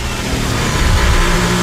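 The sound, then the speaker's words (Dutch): A Formula 1 car engine roars loudly and continuously from an onboard camera on Charles Leclerc's car, its pitch rising and wavering slightly as it revs hard, with no voices present. “Onboard bij Charles Leclerc.”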